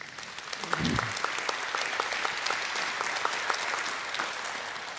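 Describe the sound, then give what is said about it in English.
An audience breaks into sustained applause for Habitat for Humanity members seated among them, a dense crackle of many hands clapping at a steady level throughout, with a brief low murmur of voices near the start. “some people sitting right around you in the chairs are part of Habitat for Humanity. Let's hear it for them.”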